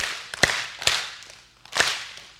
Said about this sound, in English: Show that you want to worship the Lord and hear this ascent by doing some rhythm. We'll do a little Selah in the middle of pause. Clap three times, then miss on four, and then clap one more time. You got this? Ready? Go.